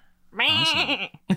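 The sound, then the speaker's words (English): A single happy goat bleats loudly, a wavering nasal cry lasting under a second, followed by a brief low grunt. “Happy goat.”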